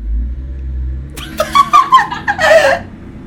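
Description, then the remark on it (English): A big car rumbles past, a deep low engine drone giving way to a louder, rising rush of tire and engine noise as it goes by. “Sorry, guys, big car going by.”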